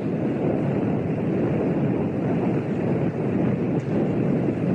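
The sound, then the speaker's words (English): The five rocket engines of Space Shuttle Challenger roar at launch in Florida on a very cold, crystal-clear day. It is the coldest shuttle launch ever. The roar is a steady, dense rumble that fills the whole stretch without letting up, heavy in the low end, with no voices over it. “Challenger seems to shake herself free of the ice and goes. All 5 rocket engines burning well.”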